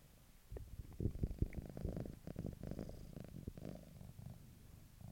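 A happy female cat purrs steadily, a low rumbling vibration with a slightly rhythmic pulse from breathing, continuing throughout without any talking.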